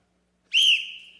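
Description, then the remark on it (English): A single sharp, loud whistle blast, blown to start a timer, begins abruptly and holds a steady high pitch for under a second before tapering off, heard alone with no talking. “Time starts when I blow this whistle.”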